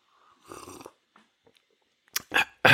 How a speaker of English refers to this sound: Let me pause for just a moment and take a sip of my preferred beverage.